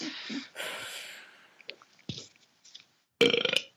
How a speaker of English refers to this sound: Oh, my God. I've just drank tea. It's gone down the wrong pipe. Okay. One minute. Sorry.